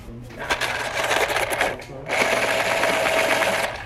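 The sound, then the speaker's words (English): An electric pencil sharpener in a class whirs and grinds loudly in two sustained bursts separated by a brief pause, its buzzy motor hum steady underneath the rasping. “Ooh, my pencil sharpened.”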